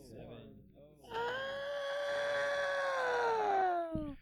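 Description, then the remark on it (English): After a few short murmured vocal sounds, a man lets out a loud, cat-like screech, holding one strained, wailing pitch for about three seconds before it sags and cuts off. “The man that just screeched at us.”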